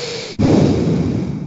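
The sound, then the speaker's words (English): A voice imitates heavy breathing: a short airy intake, then a long, loud, rasping exhale that holds steady for over a second with no words. “Just one of those things where it's just like you can only hear him breathing.”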